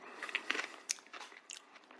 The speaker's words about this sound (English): There's a little crunch to it. There's a little crunch that you don't normally get in a Reese's Cup.